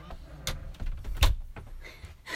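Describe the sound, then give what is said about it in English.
A cat, Jasper, nudges a closet door open, giving a low rumbling slide with two sharp knocks as it bumps along. Moderately loud, with no one talking. “so sorry, our cat just opened up our closet door.”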